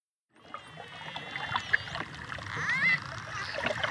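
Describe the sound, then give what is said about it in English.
Continuous splashing and churning of Caribbean Sea water as a noisy pod of dolphins dives off the coast of Punta Allen in Mexico's Yucatan, steady, with a few brief high squeaky whistles of the dolphins calling to each other rising over the watery noise. “We leave you this week splashing in the waves in the Caribbean Sea.”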